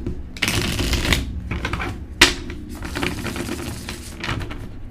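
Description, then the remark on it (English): Tarot cards being shuffled, a dense papery riffling and flapping that runs almost nonstop with a few sharper snaps, no voices over it. “Can we clarify the cards on the table with the pre-shuffle message?”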